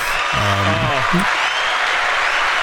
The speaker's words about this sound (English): The crowd goes wild.